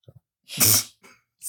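human body sound, cough

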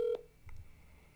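signal or alarm, telephone dialing tones

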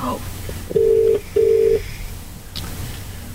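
signal or alarm, telephone ringing

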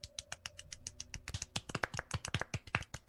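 crowd, soft golf clap

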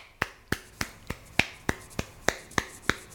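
crowd, audience clapping

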